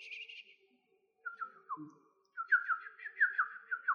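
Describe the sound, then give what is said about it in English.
A person whistles a bird call: a brief high trill, a few sliding notes after a pause, then a quick run of chirpy, warbling whistles, clear with no talking. “Oh, whistle like this.”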